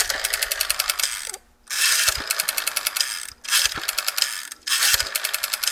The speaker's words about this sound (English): I love the sound of the dial on the phone itself. So here's a Western Electric phone made by the Bell System, and this had a great sounding dial to it.